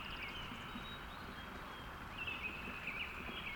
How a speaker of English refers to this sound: So refreshing. The sound of a gurgling brook with distant bird songs high in the Cascade Mountains of Oregon in mid-June.